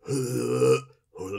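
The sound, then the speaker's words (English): A voice imitates a character retching up ectoplasm after being possessed: a long, guttural, strained heave lasting most of a second, a brief pause, then a second harsh gagging burst starting up. “Shortly thereafter, yeah, he pukes it out. So every time he exercises something, it's this like...”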